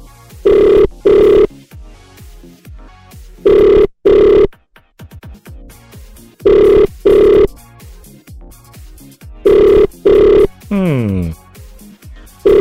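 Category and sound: signal or alarm, telephone ringing unanswered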